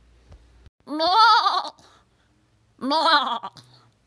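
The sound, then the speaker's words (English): A goat bleats twice, loud, each cry a wavering, nasal call of about half a second with a short pause between them and no voices around. “Let's get to the inspiration goat.”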